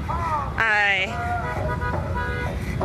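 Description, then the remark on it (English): A loud car horn blasts once for about half a second over a steady rumble of idling engines and traffic in a completely full parking lot at a rally, with softer tonal sounds continuing afterward. “We're just heading out of the parking lot. So many cars are here.”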